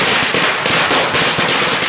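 Firecrackers thrown into a neighbor's house explode loudly in a rapid, continuous string of sharp cracks and pops, densely packed with no pauses and no voices, with a lot of smoke.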